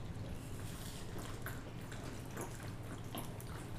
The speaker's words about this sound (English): Before anything, are we chugging this beer? Yeah. Oh, yeah. Cheers, last one chugs another one. Last one chugs another beer.